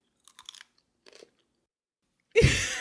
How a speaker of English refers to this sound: I just want another French fries. I'm just like surreptitiously chewing here because, oh my God.